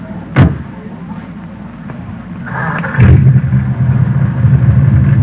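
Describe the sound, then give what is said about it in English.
An old jalopy's engine is started on a pier: a sharp clunk, a brief whirring crank, then the motor catches and settles into a steady, low, rumbling idle that continues to the end. “Man, the engine sounds nice, doesn't it?”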